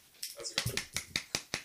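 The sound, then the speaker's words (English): A short run of sharp finger snaps, about seven crisp clicks at a quick uneven pace, fairly loud, standing in for a sparse round of applause as mock fanfare. “That's fanfare. That's applause. That's the worst fanfare I've ever heard.”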